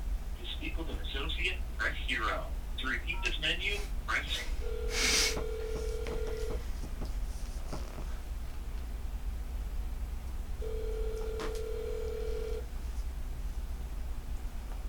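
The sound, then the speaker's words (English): A phone call to a Walmart store rings twice with a steady, low-pitched ringback tone, each ring lasting about two seconds with a pause between, after a moment of voices talking over a constant line hum. “I'm answering your call.”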